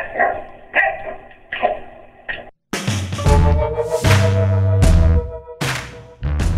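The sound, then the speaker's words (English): King, a prize-winning dog visiting New York, barks repeatedly, starting with a steady series of short, evenly spaced barks, then louder, fuller barks and yelps crowding together. “Dog wins a prize, and he thinks he can just bark over everybody.”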